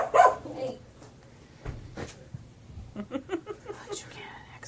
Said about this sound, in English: Whose growl was that? And the dogs are revolting. Somebody bit someone's eyeball.